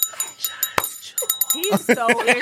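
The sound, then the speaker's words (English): A small, bright bell rings with a quick run of high, metallic strikes whose tones hang briefly, then voices begin talking over the fading ring. “But go ahead, y'all, Do the bell.”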